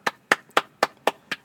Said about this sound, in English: What's that? It's a folder I slapped on the desk.